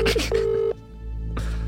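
Telephone dialing tones as a call is placed: a short beep followed by a longer steady tone, clear, with brief bursts of noise at the start and near the end.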